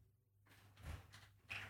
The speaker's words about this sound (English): please close the door.